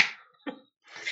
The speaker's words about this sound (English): Did you actually just clap?